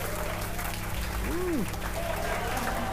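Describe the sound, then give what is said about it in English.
Steady, dense applause fills the whole stretch at an even level, with a brief rising-and-falling whoop cutting through about halfway. “Let's get more applause.”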